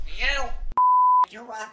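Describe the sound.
A steady, high-pitched censor bleep lasting about half a second cuts abruptly into a voice, covering a swear word, with speech on either side of it.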